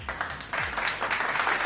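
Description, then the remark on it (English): A short burst of crowd applause sound effect, triggered with a button, a dense wash of many hands clapping that swells louder after a brief moment and holds steady to the end, with no one talking over it. “We gonna give her a clap, too.”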